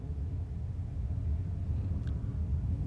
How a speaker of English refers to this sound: Oh, there's thunder now.